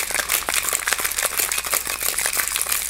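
food or drink, shaking a cocktail shaker

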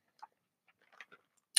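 food or drink, sipping cold brew coffee

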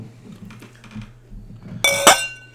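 household object, glasses clinking

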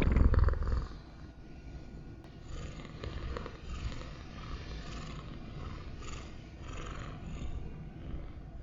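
animal, cat purring

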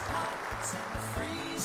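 sound effect, applause sound effect

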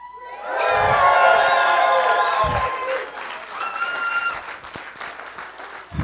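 crowd, crowd cheering and clapping

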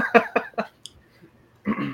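human body sound, sneeze

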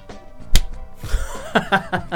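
human body sound, single hand clap

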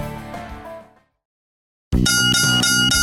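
signal or alarm, four bell chimes

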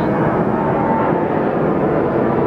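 vehicle, airplane passing overhead

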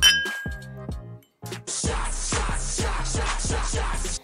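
household object, glasses clinking

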